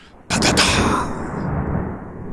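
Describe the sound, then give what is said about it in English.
A sudden, loud crack of thunder in a thunderstorm bursts out after a brief quiet, then settles into a deep rolling rumble that lingers and slowly fades. No voices are heard. “So, a real thunder has real noise and it's very loud.”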